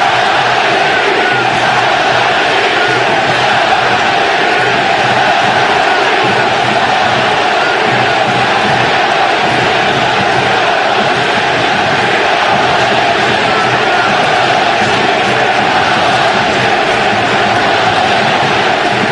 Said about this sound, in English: I heard the crowd go silent and now getting very loud at the Coliseum.